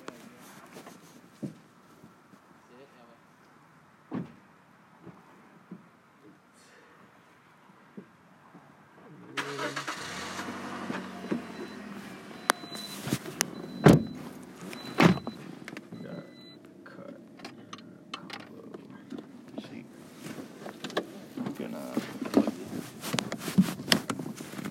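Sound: getting into a car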